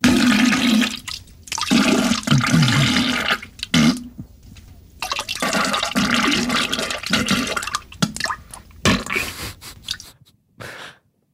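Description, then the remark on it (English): A toilet flushes with a loud, hissing rush of water and gurgling, broken by a few brief dips, before draining off and falling quiet near the end. “Oh, sorry, I'm currently sitting on a toilet, it seems.”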